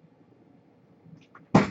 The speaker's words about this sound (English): How can I ignore you? You bust through the door like a 16-year-old kid. And then you get the dogs going.